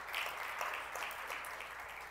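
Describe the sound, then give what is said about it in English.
A crowd claps together in a steady, dense wash of applause, given as a morning clap offering to the Lord, that stays fairly even in loudness throughout, with no voices standing out. “Give the Lord a clap offering and help me out this morning.”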